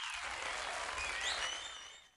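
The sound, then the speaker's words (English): A steady burst of applause, dense crackling clapping from a crowd that holds for about two seconds, with a few faint high whistles rising over it before it tapers off. “Yay! Applause.”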